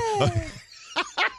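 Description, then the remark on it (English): A small, feeble puppy bark: a thin, falling whine followed by two short, weak yips in quick succession, without any talking. “That's like the saddest puppy I've ever heard in my life.”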